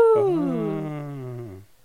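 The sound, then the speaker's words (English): A baby boy yells from the other side of the house in one long, drawn-out wail that starts high and slides downward in pitch, fading out after about a second and a half, with no talking over it. “You can probably hear him still yelling on the other side of the house”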